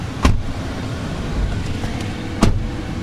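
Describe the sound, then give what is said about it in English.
A pickup truck's engine rumbles steadily from inside the cab as it drives on a tour of an old neighborhood now owned by the Murphy Oil Refinery, a low continuous drone broken by two sharp thumps or knocks a couple of seconds apart. “We climb into his pickup truck for a tour of the old neighborhood.”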